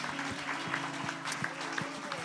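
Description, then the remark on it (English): An audience at a morning service claps for the Lord in steady, dense applause, many hands blending into a continuous patter with a low sustained hum underneath throughout. “Give the Lord a big hand clap if you would this morning.”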